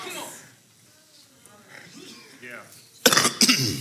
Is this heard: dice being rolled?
no